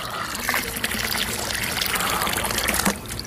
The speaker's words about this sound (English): And so Glory and Liv watched as all the animals ran over to this empty, dry pond and watched Wally dump a whole bucket of water into the pond.